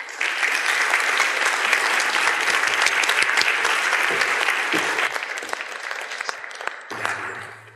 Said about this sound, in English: If you could please give her a warm round of applause.